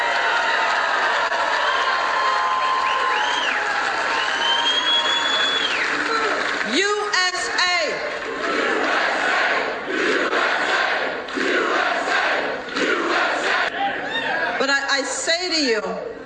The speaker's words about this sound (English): USA, USA, the crowd erupts in chants throughout this speech, throughout this acceptance speech, the crowd erupts.